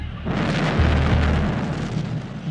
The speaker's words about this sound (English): A grenade was thrown, and then there was a massive explosion.